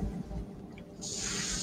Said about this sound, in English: Uh-oh, that's the acid hissing. Then the tail poking him in the back.